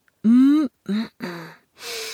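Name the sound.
voice imitating sniffing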